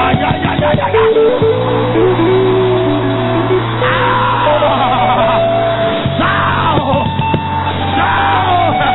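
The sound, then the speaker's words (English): A crowd erupts in loud, sustained shouting and yelling, voices overlapping in a dense roar that holds steady for several seconds, with a strong low tone droning underneath. “Are you ready to shout again?”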